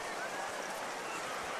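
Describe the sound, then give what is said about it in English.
Heavy rain pours down in a steady, dense hiss during the first half of a football game between Spring Hill and Page, an unbroken wash of noise with no distinct drops or pauses across the short stretch. “Spring Hill punting the football, gets a kickoff in the rain.”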